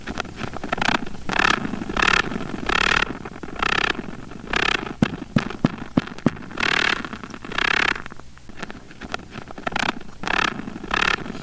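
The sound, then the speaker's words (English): Rapid scratchy buzzing bursts of male wolf spider courtship vibration drumming, made for a female to feel, repeating in rhythmic pulses of about half a second, interrupted by a few sharp clicks, with no voices. “So here's a sample of some mad, hot, and ready to go male wolf spider beats.”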